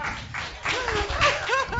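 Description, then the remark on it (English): A crowd breaks into a round of applause, dense steady clapping that swells after a brief pause, with a few high whooping cheers rising over it near the end. “Round of applause.”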